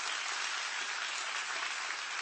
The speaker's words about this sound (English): But I do want to let you know that I receive and I appreciate your gift. Can we give the hand clap for those who do that? Yeah.